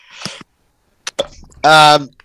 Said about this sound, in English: Yeah, such as coughing there.